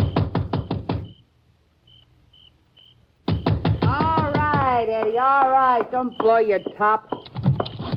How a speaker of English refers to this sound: I left the car on the road and slipped up to the house. It was dark. I knocked.